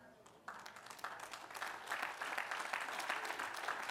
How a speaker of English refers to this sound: I'm grateful. Thank you for applauding. But whether or not you applauded, my heart applauds to God.